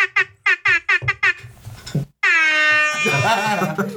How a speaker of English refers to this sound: just the air horn, though, nothing else.